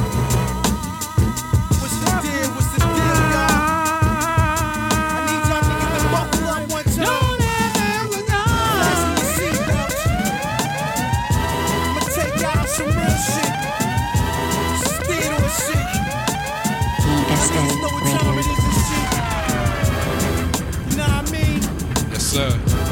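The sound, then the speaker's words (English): A loud, continuous hip-hop track plays with a steady beat under sustained synth notes, followed by repeated rising and falling siren-like synth swoops. “Now to the next one, I'm gonna play it going long a little bit.”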